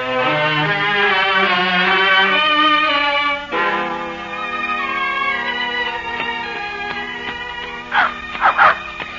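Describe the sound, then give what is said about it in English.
A dog named Jacob whines and yelps in drawn-out, wavering cries, then gives a few short sharp barks near the end, fairly loud over a steady background hum. “Did you have to bring your dog along, too?”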